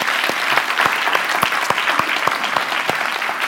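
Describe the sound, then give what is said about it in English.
A crowd at a Christmas 2014 morning church service claps for the kids and the children's ministry, a dense wash of many hands with sharper individual claps standing out at a brisk, even pace, loud and sustained throughout with no talking. “How about another quick round of applause for our kids and our children's ministry?”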